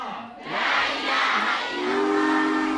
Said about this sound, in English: Europe in the 1930s, a dangerous place to be. As the Orient Express rattles its way towards Constantinople, a motley group of people find themselves threatened by intrigue, skullduggery and murderous politics.